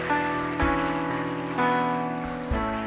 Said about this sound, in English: Oh, put your hands together for them. They are coming. They are coming. Oh, keep clapping. Keep clapping. What a blessing. What a blessing.